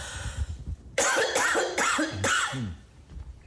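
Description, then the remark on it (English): A run of about four harsh coughs in quick succession, loud and raspy, following a moment of quiet background noise, with no talking. “Excuse me, this cough is okay. Not wanting to go.”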